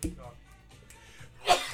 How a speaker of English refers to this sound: Oh, I got sneeze.